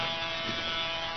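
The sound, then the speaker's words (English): A bumblebee buzzes in a steady, unbroken drone with a rich, reedy hum as it circles, holding an even loudness for just over a second with no voices. “Go away, bee, go away. Looks like he's circling for a landing.”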